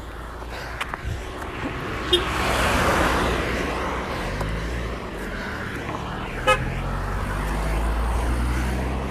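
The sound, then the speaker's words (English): Neighbors' car horns beep twice, a few seconds apart, at a person running up and down by their houses, over a steady rumble of passing traffic and engine noise, with a faint, higher toot earlier on. “That's all my neighbors beeping at me, thinking I'm crazy running up and down their house about 20 times.”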